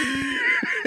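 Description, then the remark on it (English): A short, loud nose blow, a honking, breathy blast of air with a steady tonal whine running through it, lasting under a second. “Why would you blow your nose?”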